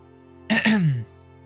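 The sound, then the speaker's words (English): A man gives a single short, deliberate throat clear to make his presence known, a quick two-part "ahem" with a falling pitch, standing alone against near silence. “He'll just clear his throat to make his presence known.”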